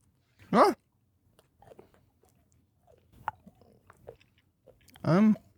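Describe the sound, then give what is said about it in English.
Chewing of a piece of spicy, powdered gum with soft, wet mouth clicks and smacks, framed by two short, loud vocal outbursts at the start and end, plus a few murmured sounds in between. “I'm going to try it. I'm gonna chew it.”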